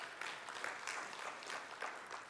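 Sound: audience applause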